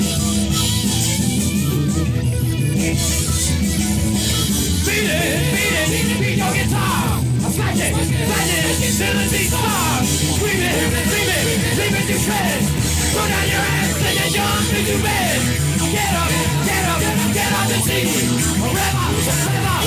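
A loud, dense rock song, track 5 of an album, plays throughout, with harsh screamed vocals over a thick wall of distorted guitars and pounding drums.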